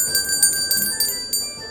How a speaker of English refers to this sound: One of them is about to say something when the crystal bell rings.